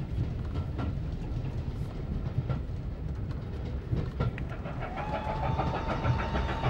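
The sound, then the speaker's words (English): A train near Bewdley rumbles steadily along the rails as it approaches Bewdley Tunnel, with a heavy low-frequency drone, periodic clicks from the wheels, and a faint rising tonal whine toward the end, heard from on board. “Well, we're just approaching Bewdley Tunnel now.”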